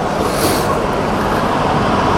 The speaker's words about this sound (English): Yeah, I'm going to do this with cars. He said just as three cars came and went, because the cars will give me a nice curve in the road.